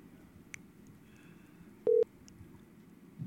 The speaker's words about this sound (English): If he answers. I like it. The phone's ringing.